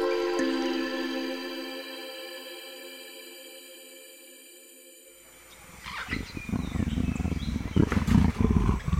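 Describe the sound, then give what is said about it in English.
A jaguar's deep roar rumbles loud in the second half in a jungle in Guyana, rough and throaty, following a stretch of high, steady tonal buzzing like jungle insects. “You saw big cats too. Jaguars around Guyana, different forest, jungle area.”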